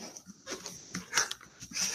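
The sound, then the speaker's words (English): A dog named Tilly pants and gnaws on a gigantic bone, with irregular bursts of breathy, crunching noise repeating over a couple of seconds and no talking. “Just take this, okay? Aw. Gigantic bone. Yes. Take this. Take this and go away.”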